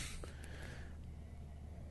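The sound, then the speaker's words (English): A soft, breathy sniff of a glass of Blue Sunday Sour beer from New Holland Brewing Company in Holland, Michigan: a single drawn-in inhale lasting about a second before fading into quiet background noise. “We're still just sniffing it.”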